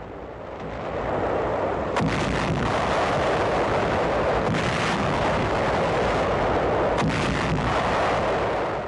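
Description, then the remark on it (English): U.S. naval guns boom repeatedly during a three-day bombardment of the Lingayen Gulf area, northern Luzon, over a dense, roaring background, with sharp blasts landing roughly every few seconds and a continuous rumble filling the gaps; no voices are heard. “A 3-day naval bombardment of the entire Lingayen Gulf area.”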